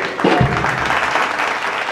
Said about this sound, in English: That's early applause. I didn't say anything yet. Well, they're applauding your intro? Applauding my intro.